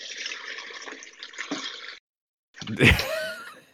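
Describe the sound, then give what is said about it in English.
Running water hisses steadily from a tap for about two seconds, cuts off briefly, then returns as a louder, splashy gush while shrimp are being drained, as if poured through a colander into a sink. “Is this water annoying you?”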